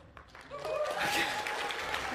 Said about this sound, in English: I wasn't asking for applause. And now I'm very humbled.